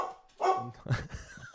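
A dog called Siri (Sierra) gives a few short, sharp barks, with brief yips and whines between them and no one talking.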